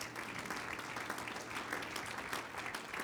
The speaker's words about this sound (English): Clap your hands one time to the Lord.